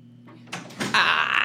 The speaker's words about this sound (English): I'm going to wait for her to close the door to the library.